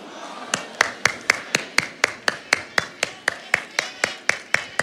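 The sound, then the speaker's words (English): One person clapping for themselves in a steady, brisk rhythm, about four sharp claps per second, continuing evenly for over four seconds with no talking over it. “I'm going to be clapping for myself.”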